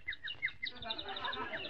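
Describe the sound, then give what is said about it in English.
A sparrow chirps in a rapid, busy run of short, high tweets that blur into steady twittering by the end, over a faint low background murmur. “What was that? A sparrow.”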